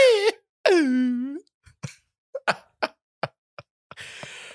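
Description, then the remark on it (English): A voice imitates whale sounds, used as vocal samples for music: two long wavering moans that slide downward in pitch, then a run of sharp clicks and a breathy, hissing exhale at the end. “No real whales, just mimicking whale noises.”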